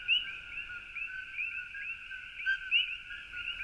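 A dense chorus of frogs calling at night on a property, away from a road, a steady high-pitched trilling drone with overlapping individual peeps rising and falling, fairly loud and continuous with no voices.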